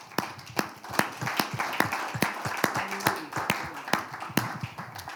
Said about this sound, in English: Why don't you go ahead and give a clap and you can be seated.